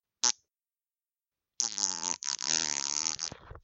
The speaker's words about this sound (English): Now we're just farting. Now we're just trying to fart on fucking microphone.